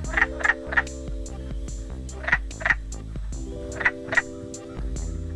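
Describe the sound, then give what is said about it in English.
A chorus of wood frogs gives short, clucking croaks in quick clusters of two or three, repeating over a steady low background hum, fairly loud, with no talking. “The wood frog's call has been compared to that of a chicken or a duck.”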